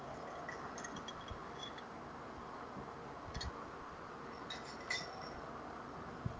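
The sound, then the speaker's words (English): Water is poured into a container to drink, with a steady, soft liquid rush broken by a few small clinks and drips. The sound is quiet, with no talking. “Took some water.”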